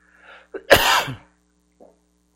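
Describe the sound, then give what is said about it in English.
A man lets out one harsh, forceful cough, preceded by a short breathy catch and followed by a faint throaty rasp, with no talking. “I appreciate folks being concerned about me recovering from this cough, and I have a handful of cough drops in my pocket.”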